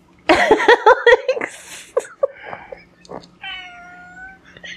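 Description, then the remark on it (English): Several cats yowl and meow, a loud drawn-out wavering cry first, then shorter meows and a long tonal caterwaul near the end, with no talking. “Uh-oh, the podcats are getting restless.”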